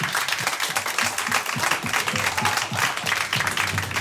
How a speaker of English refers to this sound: Could have a round of applause, please.